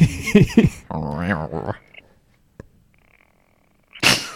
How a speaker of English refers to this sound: Is that cat purring, maybe?